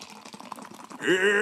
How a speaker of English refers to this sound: I've poured half of my can, which is already more Pepsi than I've drunk since the last Pepsi swirl.